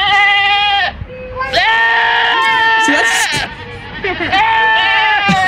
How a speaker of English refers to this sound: 3 examples that Elon Musk gave for horn options. You'll now be able to have goat sounds.